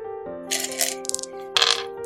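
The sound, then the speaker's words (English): Dice clatter across a hard tabletop in a couple of quick rattling bursts with a few small clicks between, set against a steady low background tone. “Yeah, I'm gonna roll with another dice, because this dice has like given me one good roll, and the rest have been garbo.”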